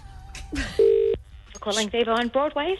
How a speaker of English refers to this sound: I get out a phone and I dial the number